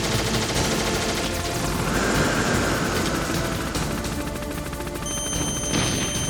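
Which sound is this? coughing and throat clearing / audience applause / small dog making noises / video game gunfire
video game gunfire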